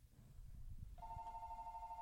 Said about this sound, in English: And the phone rang.